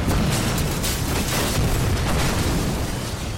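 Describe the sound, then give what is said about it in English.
A heavy explosion of a building roars and rumbles continuously, deep and loud, with dense crackling debris noise filling the whole stretch and no voices; the blast shatters rock, concrete and stone and partially demolishes the buildings to either side. “The light that you thought was flashes of muzzle fire and may have been gives way to an even brighter light as the building itself goes up in an explosion.”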